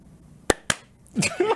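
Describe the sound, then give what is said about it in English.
Four people with eyes closed try to clap at the same time without a countdown: two sharp, loud hand claps land about a fifth of a second apart instead of together, then voices start talking right afterward. “Challenge where you have to close your eyes and then like try to clap at the same time without like a countdown or anything like that.”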